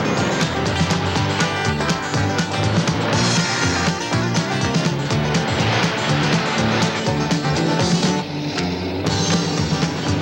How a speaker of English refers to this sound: And they're off. 10 of the biggest, baddest trucks around in a trial heat for the first ever Get Down and Burn Rubber Bobtail Truck Race.